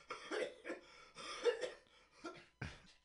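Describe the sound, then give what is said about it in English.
A man's coughing fit as his laugh turns into coughing while smoking a cigarette: several harsh, raspy coughs come in uneven clusters, with short breathy gaps between them and a sharp final hack near the end. No one speaks. “laughs, which turns into a coughing fit.”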